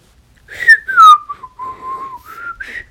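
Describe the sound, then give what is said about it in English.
Someone whistles a short, aimless little tune, the pitch wandering and sliding between notes for a few seconds with no talking, casual and a bit awkward. “Let's just look away and whistle awkwardly.”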